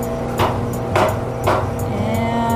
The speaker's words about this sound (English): So 1, 2, 3, 4, 5 technicians are bringing the core out past us, and I see some spaces, so I'm gonna take a sample. Let's see. Punching this tool through the liner. Okay. Hooking a syringe on.